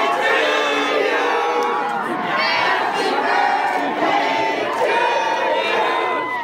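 A crowd of about 450 schoolchildren with balloons and signs lining a sidewalk cheers and shrieks continuously to surprise a 90-year-old former substitute teacher on her birthday, a dense wall of high-pitched overlapping voices that stays loud and steady, with rising and falling swells.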